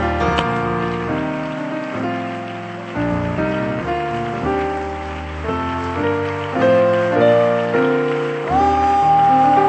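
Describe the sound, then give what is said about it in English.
An audience claps their hands in praise, a steady patter of many hands running under loud sustained organ-like chords that shift every second or so. No one speaks. “And if you're standing here, put your Bibles behind you and clap unto the Lord.”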